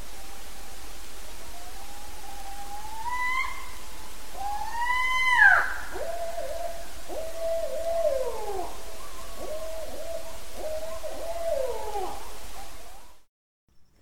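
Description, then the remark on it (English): Barred owl hooting, a wild series of rising and falling calls with a sharp upward squeal early on, then a run of descending hoots over steady background hiss, moderately loud. “No Owls Barred Part 2: Hootin N' Hollerin (Barred Owl)”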